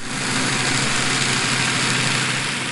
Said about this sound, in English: Oh, yeah, boat noise, a.k.a. human noise. Like, there's less humans out here making human touristy noises.